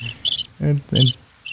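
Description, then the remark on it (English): Synthetic cricket chirping from a preset on a mixer: bright, buzzy chirp bursts repeating in quick pulses, with a couple of lower tonal swells in between, loud with no talking. “Bad crickets. This is a preset on this mixer I bought. Those are like animatronic crickets.”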